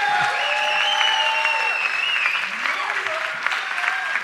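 An audience gives a loud, steady round of applause lasting several seconds, with high whoops and cheers rising above the dense clapping throughout.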